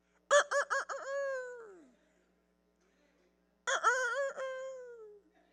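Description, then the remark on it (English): During a sermon about Peter's denial, a man's voice mimics a rooster twice, each crow starting with quick choppy bursts before stretching into a long, falling wail, with a short silent gap between the loud calls. “you'll deny me before that old rooster crows three times”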